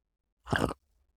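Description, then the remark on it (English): A single short, gravelly throat clear, a rough guttural rasp lasting about a quarter second, fairly loud against otherwise near silence, with no talking. “Got one of those frogs in my throat, or as we used to call it when I was a young teenager, fat throat.”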